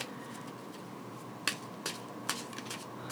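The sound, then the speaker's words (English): A deck of playing cards being shuffled: a few sharp, crisp card snaps and softer flicks come at uneven intervals over a low, steady hiss, with no one speaking. “Just shuffling it up, as you can see.”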